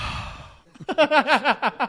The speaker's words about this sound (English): Dude, you know I breathed so loud into this mic when it first started, so forgive me if you hear just...